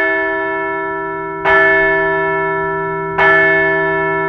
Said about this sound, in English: So let's ring the bell for the return of Red October.